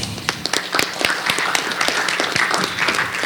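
A group of people applauds steadily for a few seconds, many overlapping claps forming a dense, crackling wash with sharper individual claps standing out, and no voices.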